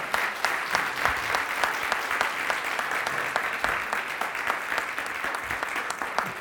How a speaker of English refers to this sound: Amen. Give God a hand clap there.